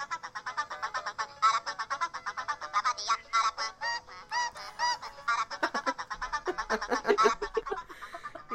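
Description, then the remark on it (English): A cartoon bird call plays as a ringtone: a rapid, continuous stream of nasal, honking squawks with no pauses, fairly loud, with no talking over it. “Hey, I have it as my ringtone.”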